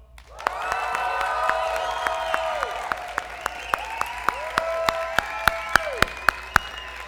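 A large audience wearing masks claps, cheers and yells all at once on cue, so people at home can hear, in a sustained, loud burst of noise, with sharp individual claps and rising shouts blending into a roaring wash that lasts several seconds.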